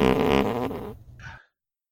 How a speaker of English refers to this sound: That was somebody sent me a fart, and I forgot to send it to Randy.